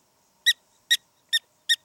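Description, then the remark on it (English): Four sharp, high-pitched squeaky barks spaced evenly, each a brief bright chirp with strong harmonics, like a squeeze toy, from a prairie dog calling alone with no other sound. “Although, I gotta say, I'm not sure what kind of dogs the French were breeding in the 1700s, because I think they sound a lot more like a dog's squeaky toy than a dog's bark, not even a French poodle's.”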